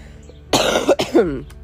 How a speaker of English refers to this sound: sorry about the coughing.